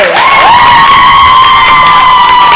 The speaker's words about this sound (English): Thank you for that genuine applause, everyone. I really appreciate it.